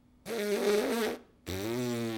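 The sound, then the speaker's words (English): Two lip buzzes like on a brass mouthpiece: a loud, wavering reedy tone for about a second, a brief pause, then a lower, steadier, rasping buzz. “But it's the fact that the sound is generated by getting the player to buzz their lips.”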